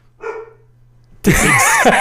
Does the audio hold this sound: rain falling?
no